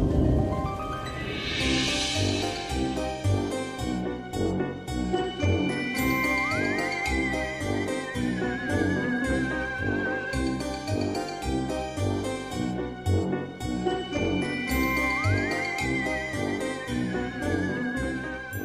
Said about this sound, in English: We're back, and it's been a hot minute. And the jingle bells are ringing.